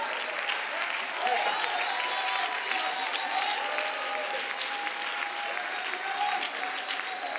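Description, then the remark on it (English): A church audience bursts into sustained applause during preaching, a dense, steady wash of clapping that holds at an even, fairly loud level for several seconds, with faint crowd voices mixed in. “If you clap for a game, you need to learn to clap for God.”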